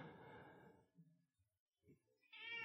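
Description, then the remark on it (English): A cat yowls loudly into the microphone, one drawn-out cry, then a quiet pause with faint rustling before a second shrill yowl starts. “Let's, you know, and the cat's yelling into it.”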